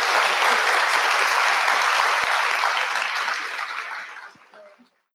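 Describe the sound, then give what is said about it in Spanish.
An audience applauds two speakers at the close of a session, clapping steadily in a dense, even burst that holds strong for about four seconds, then thins out and fades away, with no talking. “Les pido, por favor, un aplauso enorme”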